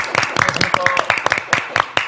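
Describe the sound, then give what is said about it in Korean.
Steady applause from a small group fills the whole moment, welcoming a reporter from Open Gonggam TV (열린공감TV) as a guest, with dense overlapping claps and a few voices murmuring or calling out underneath. “여러분들이 너무너무 좋아하는 열린공감TV의 강진구 기자님 오셨습니다. 박수로 맞아주시죠.”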